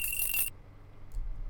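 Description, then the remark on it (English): A bright, high ringing chime of coins being picked up in a video game with a runaway cart on a track, a single short shimmering burst with a steady tone that cuts off after half a second, leaving a low hum. “The coins that you're going to pick up.”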